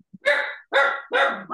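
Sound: dog barking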